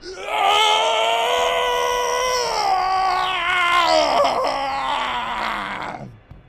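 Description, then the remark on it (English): A man lets out one long, loud, blood-curdling scream lasting about six seconds. His anguished voice wavers and dips in pitch midway, then strains upward before breaking off abruptly. No other voices. “is right from behind the painting, you hear the blood-curdling scream of a man.”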